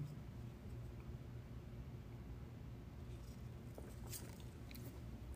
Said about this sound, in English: Woo, let me sip on this tea.